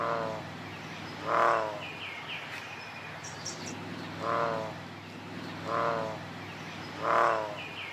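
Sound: bullfrog calling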